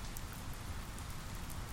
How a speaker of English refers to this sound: The rain provides a steady percussion that becomes part of my song.